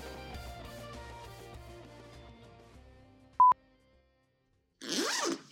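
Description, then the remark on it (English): Background music fades out and a short electronic beep sounds, followed by silence, then one quick, loud, raspy zipper pull as a vest is unzipped to be taken off, lasting under a second. “I just realized I need to take my vest off because it's loud. That didn't sound like a zipper.”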